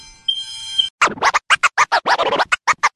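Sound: fire alarm ringing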